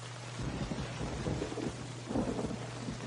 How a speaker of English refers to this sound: The rain.